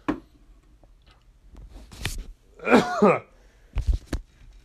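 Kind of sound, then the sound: human body sound, coughing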